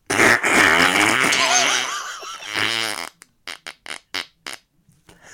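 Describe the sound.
A long, sputtering, wet raspberry blown with the mouth to imitate a fart, followed by several short bursts of laughter trailing off in quick puffs.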